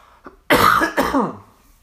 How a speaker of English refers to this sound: excuse me, I got a COVID cough.